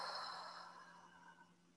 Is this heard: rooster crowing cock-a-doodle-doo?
no